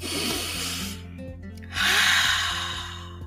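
A deep breath drawn in and then let out as a pause to cope with stress, two long airy rushes separated by a short pause, fairly loud over a faint steady hum, with no talking.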